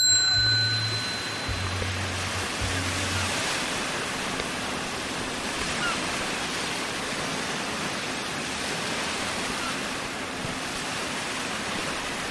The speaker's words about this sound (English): I don't usually record on high sensitivity, but I thought you'd want to hear the waves. There's still snow along the water's edge, you know, covering the pebble beachy rocks. But it's nice.